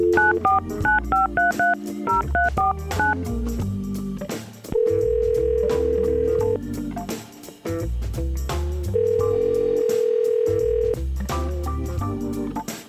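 A quick run of telephone keypad tones beeps out a number for a call from the Y100 radio show, followed by two long, steady ringback tones with a pause between them, all playing over a bed of music with no talking.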